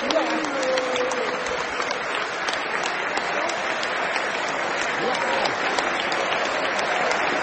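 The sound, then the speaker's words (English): A large crowd of football fans in a stadium claps steadily and continuously as manager Graham Potter, with the squad behind him, comes toward them applauding the fans; a dense wash of applause holds at an even level, with scattered voices calling out beneath it. “He's applauding the fans.”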